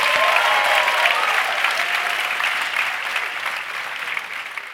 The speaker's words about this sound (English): Let's get a round of applause as we're out for the break.